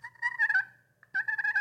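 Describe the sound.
A turkey call, which needs some conditioning, mimics a gobble in two loud bursts of rapid, warbling rattles separated by a short pause, with no talking.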